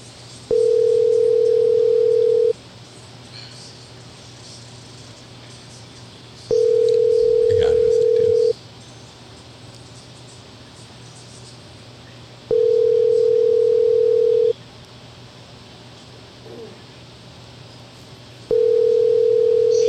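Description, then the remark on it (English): A phone line rings out on an unanswered call: four steady two-second ringback tones, each followed by about four seconds of quiet, over a faint background hiss. “Like, thinking someone's going to answer the phone.”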